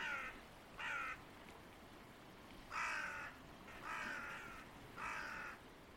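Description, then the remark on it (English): A crow caws five times in harsh, raspy bursts, two close together, then a pause before three more at steady intervals, fairly clear over a light outdoor background hiss. “Now, when I used to do my wildlife tours, I used to sit outside, and the ravens and the hooded crows both have a call that signalizes that there's an eagle present.”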